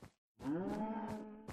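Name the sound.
cow mooing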